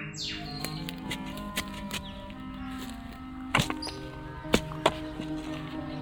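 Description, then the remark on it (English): A spade digs a deep hole in garden soil to put in a plant with a bird buried beneath it, a series of irregular scraping, crunching strikes, a few landing harder than others, with steady outdoor ambience and faint birdsong behind. “Gotta go nice and deep to get the plant and the bird in.”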